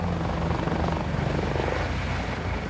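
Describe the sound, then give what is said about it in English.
A helicopter rises into the air from a patch of scrubland among tropical trees, with a man hastily forced inside. Its engine and rotor produce a steady, loud, dense whine with a low throbbing pulse that continues throughout without any voices. “He's hauled through the tropical trees, then across a patch of scrubland to where a helicopter is waiting. Hastily, he's manhandled inside. The chopper rises into the air.”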